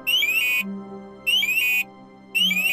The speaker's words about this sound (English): The night went on pretty quiet. Well, it did until one of the monitors started to give out an audible alarm.